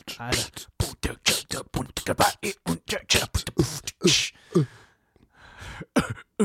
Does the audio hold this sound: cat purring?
no